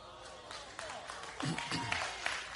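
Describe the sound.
A crowd claps steadily in a dense, crackling patter that swells slightly toward the end, with voices calling out amid the applause.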